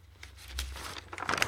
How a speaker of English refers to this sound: Excuse me while I turn my paper.